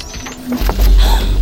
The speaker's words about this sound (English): The sound of a shock prod is one of the first things an electric hears after activation.